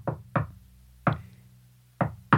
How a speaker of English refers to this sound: It was a secret knock. It's got the Mayo knock, has it? Yeah, I had to do a secret knock.